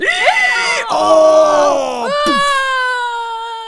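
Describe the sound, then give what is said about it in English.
A man's voice whimpers and moans as if in pain, as a robber bitten on the leg by a dog limps across a yard; several drawn-out wavering cries rising and falling in pitch, fairly loud, performed as a vocal imitation. “Screamed the robber, and he limped across the yard, whimpering and moaning.”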